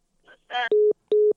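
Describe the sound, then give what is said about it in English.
A short burst of voice sounds gives way to two loud, steady electronic beeps, each lasting about a quarter second with a brief gap, as a phone call drops and the connection is lost. “Oh, lost connection.”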